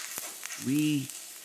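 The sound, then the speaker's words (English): An egg sizzles in a frying pan with a steady crackling hiss, briefly joined midway by a low humming tone that swells and fades. “And it's the sizzling egg.”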